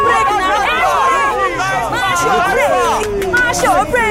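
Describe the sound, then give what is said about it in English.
A crowd of bus passengers, woken from sleep as the bus keeps swerving, shouts and cries out all at once in a loud, continuous, overlapping din, with high pitched yells rising and falling throughout. “All the sleepers were up and yelling.”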